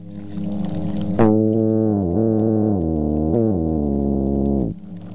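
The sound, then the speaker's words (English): A midshipman fish's swim bladder hum, made by vibrating a pair of muscles on the walls of its gas-filled swim bladder, which amplifies the sound in the water: a loud, steady low drone rich in buzzy harmonics, holding for about three and a half seconds with a couple of slight pitch shifts before cutting off. “Midshipman fish have a pair of muscles attached to the walls of their swim bladder.”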